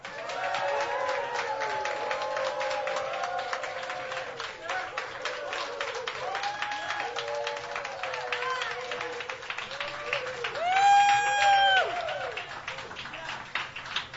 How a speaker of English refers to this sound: Room full of people, and they've all got extended day passes, it turns out. That's a happy-sounding crowd.